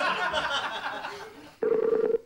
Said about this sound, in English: Hang on a second. We're ringing someone here.